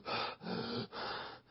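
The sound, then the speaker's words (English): A voice imitates someone gasping for air: three harsh, breathy gasps in quick succession, fairly loud, with no talking. “You're trying to breathe, gasping for air.”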